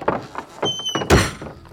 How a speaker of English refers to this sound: The outhouse door won't open. That's odd. Don't you have super strength? I do, but it won't budge. That's because it's not a door.